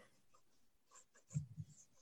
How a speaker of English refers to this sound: I can hear some pens going. I hear the little... The little...